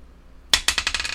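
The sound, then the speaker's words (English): Dice clatter onto a hard table, a sharp first impact followed by a quick run of smaller bouncing clicks as they tumble and settle, fairly loud with no talking. “So we'll go ahead and roll the good dice first.”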